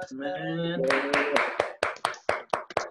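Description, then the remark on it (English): A voice trails off as an audience breaks into applause for a pastor after a church class, a dense burst of clapping that quickly thins into a handful of separate, sharp claps spaced unevenly until it stops. “Everybody just give a big round of applause”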